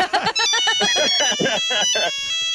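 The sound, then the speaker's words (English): A Nokia mobile phone ringtone plays a quick, bright electronic melody of short stepping notes, loud, running steadily for a couple of seconds. “That is Nokia right there.”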